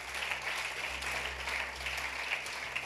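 A crowd at a Christian camp service claps hands in a steady, dense wash of applause lasting a few seconds, with a low hum underneath and no voices standing out.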